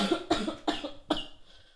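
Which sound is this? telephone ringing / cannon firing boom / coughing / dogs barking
coughing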